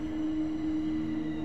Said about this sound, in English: You hear the train coming, and you hope that you can soon make a speedy exit.